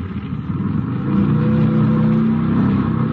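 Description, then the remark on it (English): A car engine revs up loudly and steadily climbs in pitch as the car pulls away back onto the road, a continuous mechanical roar with no voices over it. “I think we can probably get back on the road now.”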